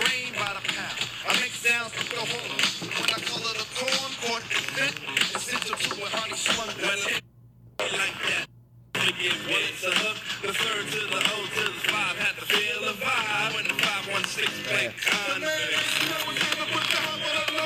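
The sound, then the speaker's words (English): Playing cards are shuffled over and over, a dense, crisp fluttering riffle that runs steadily, broken by two brief silent gaps partway through. “Cards shuffling. You got it, bro.”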